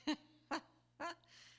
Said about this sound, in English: There are so many squirrels chirping around this property.